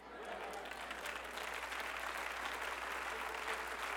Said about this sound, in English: I think there's nearly 1,000 people here that your default is to clap your hands. Well, I got good news for you. Clap your hands, all you people.